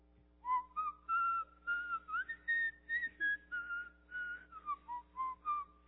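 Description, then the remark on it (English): Someone whistles a lively melody for several seconds, clear pure notes gliding up and down in short rhythmic phrases, fairly loud with a faint steady hum behind. “You know, I think it says a lot about a person who's a hummer. Or a whistler.”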